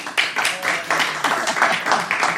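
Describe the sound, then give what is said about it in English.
Steady, dense applause from an audience voting for the British colony expedition, many hands clapping at once in a loud, continuous patter that carries on throughout without a break. “And if you think you'd like to get on anyway, you want its British colony expedition, applaud now.”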